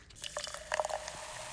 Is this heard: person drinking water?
yes